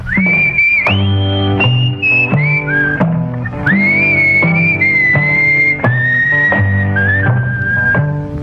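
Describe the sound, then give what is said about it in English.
A person whistles a bright, sustained melody with gliding pitch bends, fairly loud, over a low accompaniment punctuated by sharp rhythmic taps. “And I told you there'd be no whistling.”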